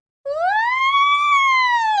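A police siren sound effect wails up from silence, its pitch rising steadily and holding in a long loud tone, with no one speaking.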